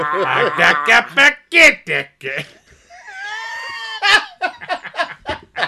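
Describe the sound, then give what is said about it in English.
A man's voice imitates Jabba the Hutt's deep, booming laugh in rhythmic guttural bursts, followed by a brief high-pitched squeal and more chuckling sounds, fairly loud. “Jabba the Hutt laugh.”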